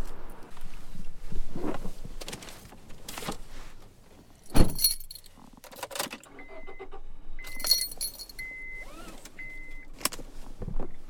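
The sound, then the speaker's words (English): Keys jangle as someone gets into a car: a car door thuds shut, followed by rustling, more key clinks and a few soft electronic chimes from the vehicle. “Okay, I'm going to get in the car.”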